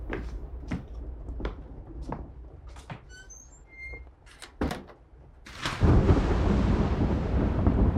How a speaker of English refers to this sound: I find it so hard with this weather. The storms and thunder do not cease.